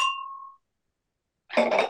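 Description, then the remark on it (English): Glasses clink in a toast: a single bright glass clink rings out and fades over about half a second, followed by a pause and then a short, busier burst of sound. “cheers to that.”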